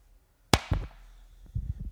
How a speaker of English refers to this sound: Okay, let's just clap really quick. Three. Okay, I'll clap. Three.